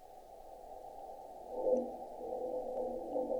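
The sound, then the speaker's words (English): Sonified seismometer data: a low, muffled rumbling hum with several brief, higher-pitched chirping pops scattered through it, marking thermal shrinkage events, and no voices. “Those are shrinkages in the seismometer.”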